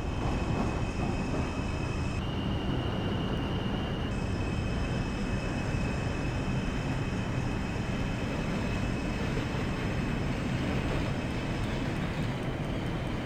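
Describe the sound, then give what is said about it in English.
A train rolls under power as its driver gives it more throttle, with a steady low rumble and a high electric motor whine that shifts pitch a couple of times, continuous, with no voices. “Doesn't this sound a little bit better than Dreamy Train?”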